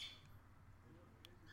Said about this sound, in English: The birds liked it too. You hear the birds?